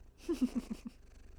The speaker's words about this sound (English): I have a cat. Hi, Darcy. She has apparently been sleeping in this room the entire time, and I had no idea. But she just woke up. Say hello. You gonna say anything? Hi, Darcy. Get some purrs.